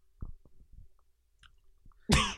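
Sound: chewing gum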